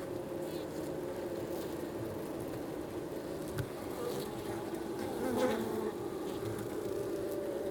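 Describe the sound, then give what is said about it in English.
A dense, continuous hum of many bees buzzing around their hives at Aspen Ridge Greenhouses in central Alberta, close and steady throughout, with individual insects droning past now and then. “Hannah Cunningham and I get up close and personal with Dylan and his bees to talk about pollinators and their importance for people and the planet.”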